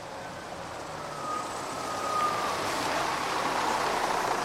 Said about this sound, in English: A bus arrived shortly, and I was on my way back to the office.